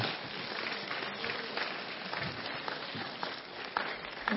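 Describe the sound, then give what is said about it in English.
A church audience claps together for the Lord in a dense, steady burst of applause lasting several seconds, many hands blending into a bright crackling wash with no voices standing out. “Yeah, let's give the Lord a clap off.”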